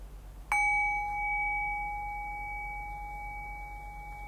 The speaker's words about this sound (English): And so keying in on the silence, I'll ring the bell again, and noticing the silence before the bell, and following the silence as the silence returns, as the bell fades.